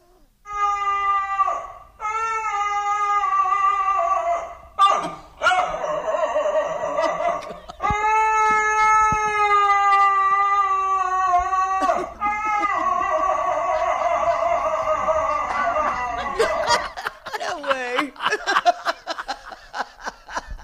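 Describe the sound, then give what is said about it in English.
A dog howls loudly in long, wavering, almost voice-like notes, several drawn-out phrases rising and falling with brief breaths between them, with no one talking. “Here on ATF and in Boneheads, we've heard tons of dogs howling, but this is the first one that sounds like, I don't know, like a man trapped inside a dog's body.”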